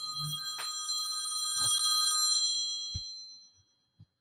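A loud, continuous metallic bell rings steadily for about three seconds, like an old mechanical telephone, then fades, followed by a few soft knocks and a clunk as if a receiver is lifted.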